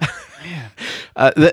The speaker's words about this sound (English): Start coughing over here.